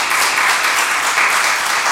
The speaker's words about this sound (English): Let's give the Lord a mighty round of applause for our mothers.